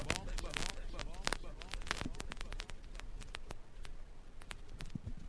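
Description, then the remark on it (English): Dense vinyl record crackle: irregular sharp clicks and pops scattered over a steady hiss, moderately loud, continuing throughout without a pause. “Analog special now, vinyls, hit a crackling.”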